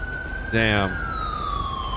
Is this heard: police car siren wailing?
yes